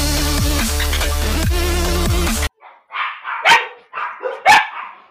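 Loud music cuts off abruptly, then a dog gives a few sharp, yelping barks in quick succession, with brief whiny tones between them.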